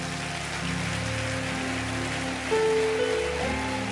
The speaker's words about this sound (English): When you meet Jesus Christ, his blood will wash all your sins and make you clean. Clap for Jesus.